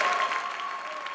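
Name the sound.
audience clapping hands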